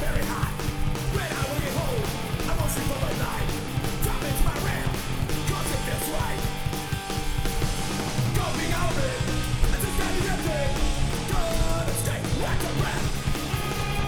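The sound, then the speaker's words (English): A loud, steady skate-punk song from an independent, low-budget release plays throughout, with dense distorted guitars and pounding drums, and shouted vocals buried low in the mix. “Nah, it's hype. Skater punk.”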